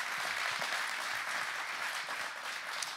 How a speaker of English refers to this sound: So would you give them a big warm welcome or a round of applause?